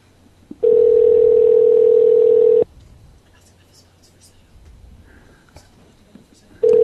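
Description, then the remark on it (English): A loud, steady telephone dial tone hums for about two seconds, then cuts off, followed by faint scattered clicks and beeps of dialing before the tone briefly returns at the end. “We're dialing one more.”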